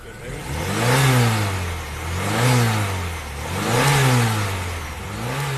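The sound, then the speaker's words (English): A car engine is revved repeatedly, rising and falling in pitch about four times in steady waves, fairly loud with a rough, throaty tone and no talking. “I don't like a person who revs a car too much, because what it does, that noise that it does, it damages your valves, you understand?”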